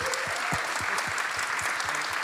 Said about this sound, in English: And, of course, let us not forget someone who was involved in the original Blade Runner, who I also think deserves a big round of applause.